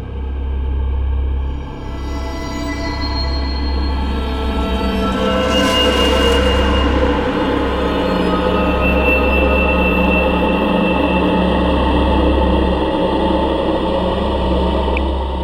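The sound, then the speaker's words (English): A train pulls away with a loud, steady low rumble of engine and wheels rolling along the track, a brief hissing burst partway through, and no voices. “All aboard.”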